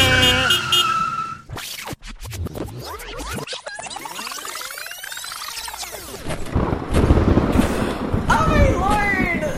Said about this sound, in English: Oh, my God, the building's about to collapse. Quick, hit the brakes! You're backing up too far!